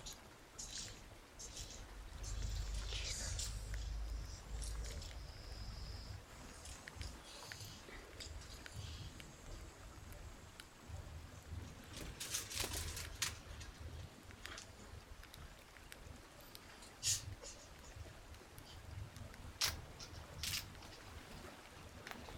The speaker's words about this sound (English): This is the water bottle.